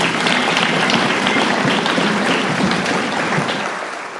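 A steady round of audience applause, a dense wash of many hands clapping at once, holding strong for about four seconds before starting to taper off at the end.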